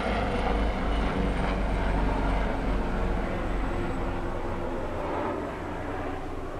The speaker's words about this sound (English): These are our helicopter reminders of silence.